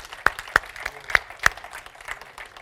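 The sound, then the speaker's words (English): A church audience applauds to thank the Lord, a dense patter of many hands with a few sharp, louder claps standing out. Steady and moderately loud, with no talking over it. “Would you give the Lord a clap and just thank him?”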